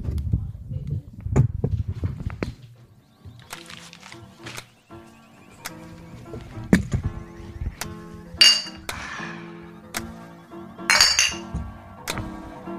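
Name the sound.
glasses clinking together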